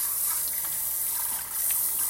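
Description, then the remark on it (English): Tap water runs steadily into a bowl, a continuous bright hiss and splash with faint shifting gurgles as it fills, no voices over it. “So, alright, I'm going to fill this bowl with water.”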